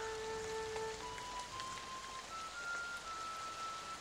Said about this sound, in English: And as the rain pours, and this door is locked tight in front of you, this music taunts you from within the prison walls.